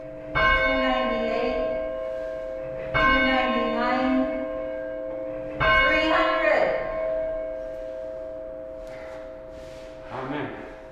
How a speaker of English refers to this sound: Church members rang the bell in September 200 times for 200,000 lives lost, and they'll do it again for 400,000.